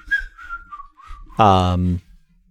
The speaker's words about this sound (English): is just whistling to avoid suspicion. Mm-hmm. Mm-hmm. It's for some reason an octave lower than it should be.